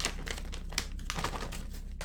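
Crinkling and crumpling of a small paper receipt from last week, a steady run of dry, crackly rustles over about two seconds with no talking.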